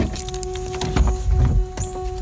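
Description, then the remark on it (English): Someone getting into their car and setting off west: rustling and small mechanical clicks, a couple of dull low thuds, and a steady engine-like hum running underneath, moderately loud, with no voices. “I get in my car and head west.”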